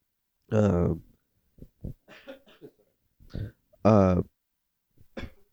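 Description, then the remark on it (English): A person coughs away from the microphone: several rough, voiced coughs and throat-clearing bursts, slightly muffled, with two stronger hacks separated by shorter, quieter coughs and breaths. “I don't want to cough into the mic. I can hear it just like it.”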